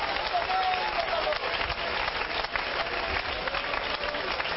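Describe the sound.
A church audience claps hands in praise of the Lord, steadily and densely, a continuous bright wash of applause that holds at an even, fairly loud level throughout, with faint voices mixed in underneath.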